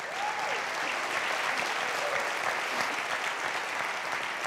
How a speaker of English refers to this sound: We're done. Will you give the Lord a hand clap of praise?